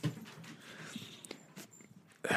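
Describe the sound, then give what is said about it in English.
Dogs playing and scuffling indoors: irregular soft thumps, claw scrapes and brief rustling bursts at a moderate, uneven level, ending in a louder scramble, with no talking. “They'll be playing. They're like, oh, we have to go show him our cool bite moves.”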